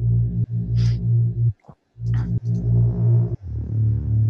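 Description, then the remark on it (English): A thick, buzzing mid bass synth, made from a custom waveform sampled from the bass of a song, plays sustained notes in short phrases, loud and upfront, with brief gaps between them and a gritty, harmonically rich tone that shifts slightly in texture toward the end. “This is a custom waveform that I sampled.”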